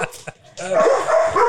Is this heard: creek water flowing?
no